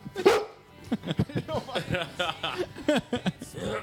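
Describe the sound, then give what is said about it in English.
A dog barks sharply a few times, the short yaps mixed in among people talking and chuckling. “can you make him bark?”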